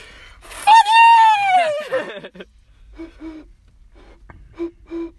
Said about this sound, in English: Barn owl. What does a barn owl look like? I don't know. Maybe it's brown. No, they're white. Well, they do have brown speckled wings.